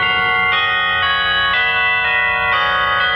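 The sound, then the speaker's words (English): Christmas church bells ring loudly, struck in a steady sequence about every half second, their bright overlapping tones sustaining and blending into a continuous shimmering peal with no voices. “Christmas bells, those Christmas bells, ringing through the land, bringing peace to all the world and goodwill to man.”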